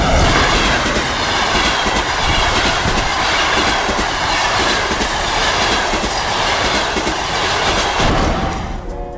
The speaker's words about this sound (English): I bought a ticket and caught the first train out of town.